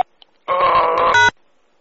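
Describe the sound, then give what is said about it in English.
Two buzzy electronic telephone keypad tones sound back to back as keys are pressed in a voicemail menu, a longer one followed by a brief tone at a different pitch, loud, with near silence before and after. “To replay your message, press 1. To continue recording, press 2.”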